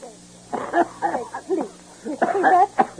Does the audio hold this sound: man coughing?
yes